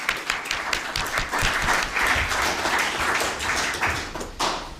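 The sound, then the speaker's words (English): A crowd claps steadily for about five seconds, a dense, sustained round of applause from many hands at moderate loudness, with no voices rising above it. “Okay, have you a round of applause?”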